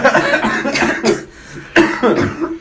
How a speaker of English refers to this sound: we're all coughing a lot. Yeah. There's something going around and we smoke a lot of cigarettes.